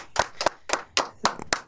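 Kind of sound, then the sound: crowd, hand clapping applause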